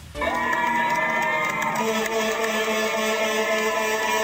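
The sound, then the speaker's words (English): A loud, steady din of New Yorkers cheering and clapping, ringing bells and banging pots and pans, adding bright metallic tones throughout, every night at 7 to celebrate healthcare workers. “Every night, exactly at 7, this is what you hear as New Yorkers clap, cheer, ring bells, and bang pots and pans to celebrate the healthcare workers risking their lives to save others.”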